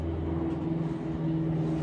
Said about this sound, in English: These planes, bro.